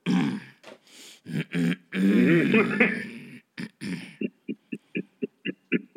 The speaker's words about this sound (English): You coughing a little too much.